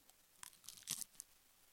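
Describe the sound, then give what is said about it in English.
Open-mouthed ASMR chewing of popcorn: a few sporadic, wet crunching bursts with short pauses between them, quiet overall and with no talking. “Mine was more open mouth and sporadic.”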